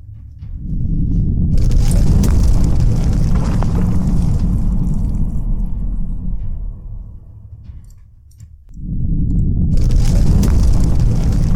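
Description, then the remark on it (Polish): A heavy, rumbling collapse of rocks, deep booming with gritty crashing debris, swelling loud for several seconds, fading briefly, then another roaring cascade of falling stone. “Słyszycie, jak gdzieś tam wali się coś kolejnego.”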